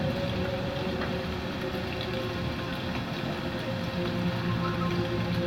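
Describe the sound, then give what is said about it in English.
Steady, heavy rain pours down outside a window, heard through a phone held up to the window, a continuous hissing wash with a faint low hum beneath it and no voices. “It's pouring rain, and I can hear them.”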